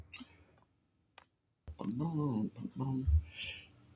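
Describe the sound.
A few soft, scattered clicks of someone typing on a computer sound in near-silence before a man starts talking over them.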